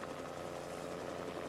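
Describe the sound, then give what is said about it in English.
A helicopter flying overhead drones steadily throughout, a continuous rotor-and-engine rumble at a moderate, even level with no voices over it. “Oh, there's a helicopter.”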